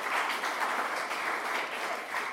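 A crowd applauds steadily, a dense, even wash of many hands clapping at once with no breaks, sustained at a fairly strong level throughout.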